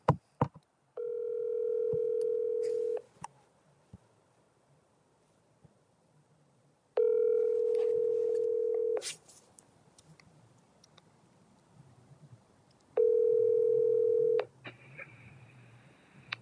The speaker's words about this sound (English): So let's call him. Let's see. Hopefully he answers. All right, trying to get him on the phone right now.